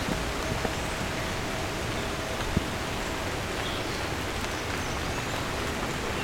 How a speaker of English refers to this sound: And here comes the rain again.